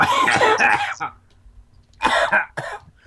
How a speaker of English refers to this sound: you coughing too? Everyone's coughing. Oh, jeez. Yeah, I'm sorry. I've been sick since Thursday, and I'm getting over it.